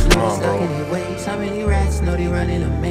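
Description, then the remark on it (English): A rap track plays loudly and continuously from iTunes, with a deep, heavy bass line shifting pitch partway through under layered melodic tones and a brief sharp hit at the start. “That's the iTunes, not me.”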